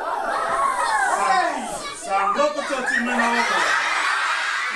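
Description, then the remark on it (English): A crowd of schoolchildren in Fiji at a Wildlife Conservation Society puppet show shrieks and squeals together right after the Joji Gobi puppet encounters a barracuda, in a continuous, high-pitched din, with bursts of excited laughter and overlapping young voices that never let up. “So this is the moment right after the Joji Gobi puppet encounters a barracuda. Are you sure it's just not them screaming because there's a puppet?”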